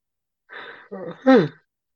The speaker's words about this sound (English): As I interrupt with a yawn